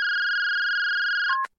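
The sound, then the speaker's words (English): A mother's telephone rings with a single sustained electronic tone, steady and fairly loud, that briefly shifts pitch before cutting off abruptly. No one speaks. “Mama's phone rings.”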